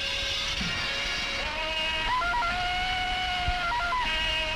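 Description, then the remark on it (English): A Tarzan yell, likened to Johnny Weissmuller's: a long, sustained yodeling yell with a bright, ringing tone that abruptly flips up and down in pitch several times, holding steady between the breaks, with no other voices. “That sounds like the Wise Muller yell.”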